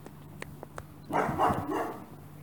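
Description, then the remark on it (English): A dog barks in a short, harsh burst of two or three barks, preceded by a few faint ticking clicks, with a low steady hum underneath. “Someone's going to be too angry at their dog for me to walk over and start patting the neighbour's cat.”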